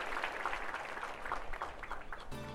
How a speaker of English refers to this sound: And he steps back, and the crowd claps as the play begins.